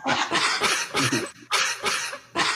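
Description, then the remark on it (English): A held keyboard note imitating a cough: about six harsh, breathy bursts in a quick, uneven rhythm, loud, with brief gaps between them and no talking. “So if I hold this note a little bit longer, that I'm mocking as a cough.”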